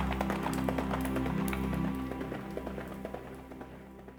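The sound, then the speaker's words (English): Rhythmic hoofbeats clatter steadily as a rider rides the horse away, growing fainter, over a low steady hum in the background. “Prince Edmund mounted his horse and rode away”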